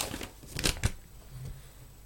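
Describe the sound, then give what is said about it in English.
Crisp, dry rustling of stacks of paper slips being shuffled through in a prize draw for two tickets to a Bristol City match, a cluster of quick rustles in the first second, then trailing off into a quieter background. “My God, the stacks of pieces of paper.”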